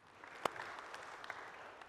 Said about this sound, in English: Isn't that amazing? Yeah, amen. Clap for that.